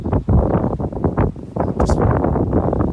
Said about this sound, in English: Wondering if that wind is going to be too noisy. I'm just letting this little gust past.